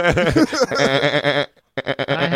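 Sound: goat bleating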